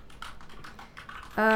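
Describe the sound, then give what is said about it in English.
Quick, irregular clicks of someone typing on a computer keyboard, fairly soft, keys tapping in a steady patter before a brief, louder tonal sound cuts in at the very end. “I hear you typing.”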